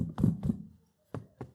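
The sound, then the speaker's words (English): A chair is handled and knocked, giving two heavier thumps in quick succession, a brief pause, then two sharper knocks, all fairly quiet, with no one speaking. “I'm not going to snatch you out of this chair, but this chair right here that you all see me holding, natural faith tells me that I can sit in this chair.”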